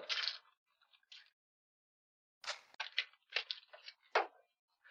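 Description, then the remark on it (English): Scissors cutting through a card: crisp, papery snips in short bursts, a brief pause, then a quicker run of several irregular cuts, with no talking. “Almost done cutting this one.”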